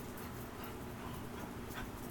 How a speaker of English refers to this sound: Your damn dog running around